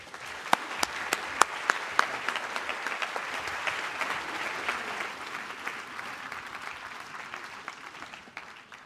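An audience breaks into warm applause welcoming a speaker, an author of a book about Nietzsche, a dense wash of many hands clapping with a few sharp individual claps at the start, holding steady for several seconds before tapering off at the end.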